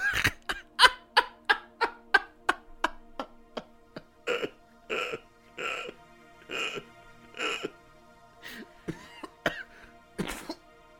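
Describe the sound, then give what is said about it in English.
A long, harsh, loud coughing fit: a rapid string of short hacking coughs that slows into heavier, drawn-out retching coughs toward the end, with no talking. “Did you cough it up?”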